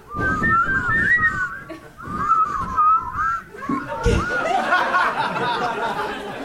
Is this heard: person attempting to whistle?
yes